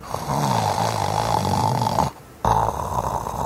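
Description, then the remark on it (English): A voice imitates a bear's slow, deep, grumbling snoring breaths, heard on both the inhale and the exhale. A rough rattling drone runs for about two seconds, breaks off briefly, then resumes, loud with no other sounds around it. “And that snoring sound, I call it a grumbling sound, was happening both on the inhale and the exhale.”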